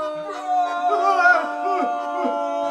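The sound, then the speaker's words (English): A loud, close roar with a howling, wavering pitch rises and bends for a couple of seconds without a break, heard alone with no other sounds around it. “And then you hear the roar again, and this time it's way closer.”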